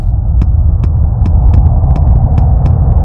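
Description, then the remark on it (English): A heavy, continuous low rumble of large trucks approaching from the distance on a wide main road through dense woods, carrying dozens of people, with faint rhythmic ticks repeating about three times a second over a steady, loud drone. “Large trucks hurtled by her, carrying dozens of people cheering and waving red and white signs.”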